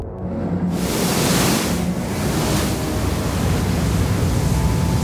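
A loud, steady roar of rushing sea water surges in within the first second and churns on without a break, like heavy swells pounding, with no voices.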